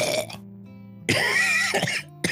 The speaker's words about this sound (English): No, me coughing.